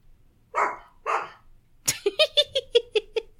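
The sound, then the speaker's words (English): A dog in a house lets out two breathy huffs, then breaks into a quick run of about eight short, sharp, fairly loud barks, with no talking, after strong wind hits the house. “sorry guys, the wind just was like really crazy on this house and then just started barking.”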